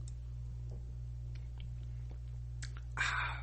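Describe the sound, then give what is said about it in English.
A quick slurping sip near the end, preceded by a few faint mouth clicks, all over a steady low electrical hum with no talking. “Let me take one more sip.”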